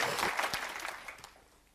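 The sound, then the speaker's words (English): A crowd claps together in a dense, crackling burst of applause that gradually thins and fades out over under two seconds, with no voices audible. “Clap your hands.”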